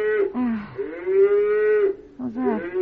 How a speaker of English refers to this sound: What's that? I don't know. That sounds like a cow mooing. Yeah, how could it be a cow? Well, I don't know. It certainly sounded like one.